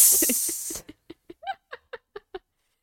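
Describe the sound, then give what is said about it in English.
A voice imitates a snake with a loud, breathy hiss lasting under a second, followed by a string of short, evenly spaced laugh-like bursts. “I didn't understand that because I don't speak snake.”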